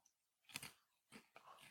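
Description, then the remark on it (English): A can of Wombo Combo, a West Coast Triple IPA from Slice Beer Company, being cracked open: a sharp burst of metallic snap and fizz, then two shorter crackling, hissing bursts, fairly loud against near silence, with no talking. “What did you just open up there”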